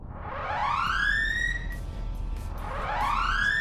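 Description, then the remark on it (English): A ship's alert alarm sounding for alert status 1 whoops twice, each tone sweeping upward in pitch then cutting off, loud and harmonically rich, over a steady low rumbling hum with no voices. “Alert status 1.”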